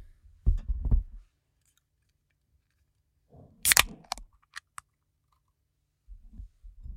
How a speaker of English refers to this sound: I forget what exactly was wrong with this one, but I'm going to crack it open and sip it and we'll work through it.